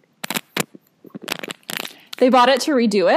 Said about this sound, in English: And I think my headphones were hitting the zipper. I just messed it up. Like, your headphones are hitting the zipper a little. So sorry about that.